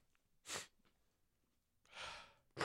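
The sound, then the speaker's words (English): A person imitates sniffing and breathing: a short, sharp sniff, a pause, then a longer airy breath followed by another quick sniff. No talking. “It's like sniffing and breathing.”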